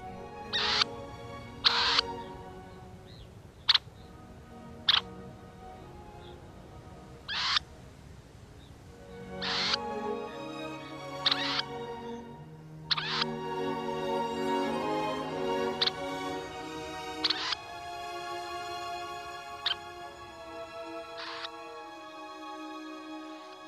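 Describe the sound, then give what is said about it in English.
A red-necked phalarope gives a series of short, sharp, high-pitched call notes at irregular intervals, clear, over a soft background of layered tonal calls that grows busier midway. “And it would be most unlikely that you would come across a red-necked phalarope.”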